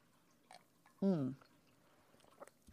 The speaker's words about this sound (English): Let me have a sip of this actually.